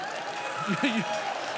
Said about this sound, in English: No, I didn't. You shouldn't clap for that. But number two, I didn't do that.